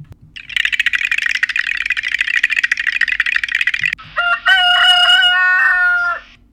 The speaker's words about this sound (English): So this week's entry into the wider woke club is the German farmer who fights for a cockerel's right to crow. A German farmer is defending her cockerel's right to crow in a court case that has attracted national attention